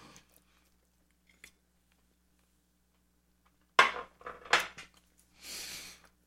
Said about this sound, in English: I'm also using this as an excuse to take a bite.